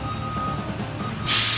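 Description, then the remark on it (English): A garbage truck outside rumbles loudly with a deep, steady engine drone and a faint whine, then a sudden sharp hiss of air bursts out near the end. “Must be the garbage truck. Holy crap. It's really loud.”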